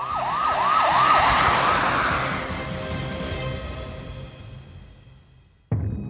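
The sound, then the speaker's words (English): A wailing emergency siren sweeps up and down over rumbling traffic noise, steadily fading as it recedes into the distance, before the sound cuts abruptly to a different background. “Jayme could hear the noises of the sirens, which were getting farther and farther away until they disappeared”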